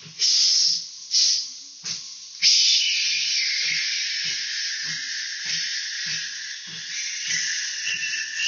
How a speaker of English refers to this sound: right when you're going to stop breathing in, one more quick inhale because it opens up the areola, the air sacs in your lungs, expanding how much air you can take in, and then very slowly exhaling, as slow as you can. Then do another double inhale.